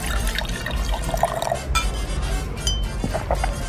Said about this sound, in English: Pour me a couple specials.